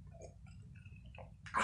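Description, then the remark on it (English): A short sip from a glass: faint wet mouth sounds over a low hum, ending in a brief, louder slurping burst. “Grab my glass here.”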